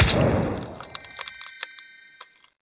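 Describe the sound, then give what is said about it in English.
A cryo spray gadget sound effect, one of a set of gadgetry sounds made for the Artificer: a strong hissing blast that fades into scattered crisp, icy crackles and ticks over a thin, high ringing shimmer, then cuts to silence. “I know I sound like I'm always making funs, but so here's a cryo spray gadget.”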